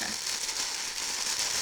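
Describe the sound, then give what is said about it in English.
Continuous crinkling and rustling of tissue paper as a birthday present is opened from a gift bag, a steady papery hiss with small crackles throughout and no voices. “So when you hear the rustling, it's because of tissue paper.”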